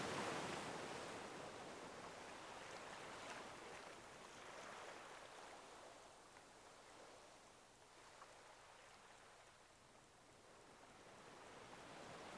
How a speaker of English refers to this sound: A pristine beach. Crystal clear water sparkles in the sunlight, with small waves breaking against the shore.